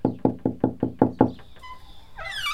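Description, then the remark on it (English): Six evenly spaced, soft knocks on a wooden door, followed by a faint creak or squeak as something shifts. No one speaks. “Abby felt like her head had just touched the pillow when she heard repeated gentle knocks on the door.”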